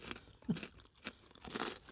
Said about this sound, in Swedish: Jag hoppas att mitt knaper hörs. Knaprigt kex med lite mjölkchoklad på.